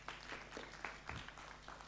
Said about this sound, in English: Thank you, band. That was beautiful. Thank you for the worship. Yeah, let's give a clap.